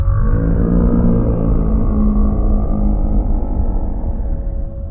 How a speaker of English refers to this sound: And then a sound that is 100 times louder than the largest beast you've ever heard roar overpowers you.